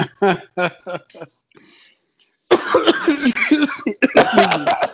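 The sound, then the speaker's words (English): A quick run of four or five harsh, raspy smoker's coughs, then a short pause before people start talking loudly over each other. “got smoker cough.”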